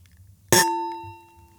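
Glasses clink once in a toast, a sharp bright strike followed by a clear ringing tone that fades over about a second, with no one talking.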